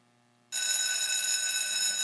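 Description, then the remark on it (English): A loud electric school bell starts abruptly after a half-second of quiet and keeps ringing steadily with a harsh, high metallic buzz, unbroken to the end. “The bell rings for class.”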